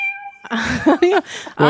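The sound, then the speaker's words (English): A short burst of several cat meows played as a sound effect, loud, rising and falling in pitch in quick succession, preceded by a brief steady electronic tone. “I'm pulling up cat piano.”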